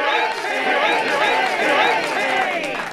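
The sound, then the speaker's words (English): A dense wash of many overlapping voices from a live audience, cheering and calling out at a steady, loud level for a few seconds with no single speaker standing out. “Love that crowd.”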